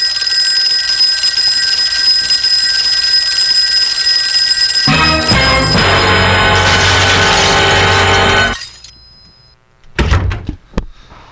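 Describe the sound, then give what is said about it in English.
A steady, high-pitched electronic ringing tone simulating ringing ears holds for several seconds before a loud, harsh rushing noise joins it. Both cut off abruptly, followed by a few short clattering knocks. “My ears are ringing. Can you hear this? Here. I'll plug this in so that you can hear what I'm hearing.”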